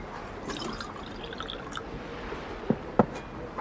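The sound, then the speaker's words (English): Water trickles and pours steadily, followed near the end by two sharp little clinks or drips against a glass. “Get water.”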